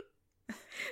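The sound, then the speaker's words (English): One sneeze: a sudden sharp intake, then a breathy, hissing burst that fades out. Nobody talks over it, and the quiet moment before it is near silent. “Bless you.”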